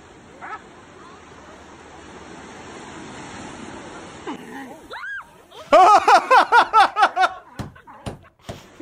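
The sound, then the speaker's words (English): Steady ocean surf washes in the background, then a sea lion lets out a loud, rapid series of about eight harsh barks, before the sound breaks off into a few sharp clicks. “This next one is called Sea Lion.”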